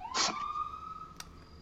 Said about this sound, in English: Impromptu siren.